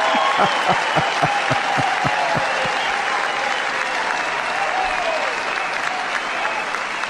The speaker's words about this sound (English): I mean, you could just hear the applause there from grassroots conservatives, right?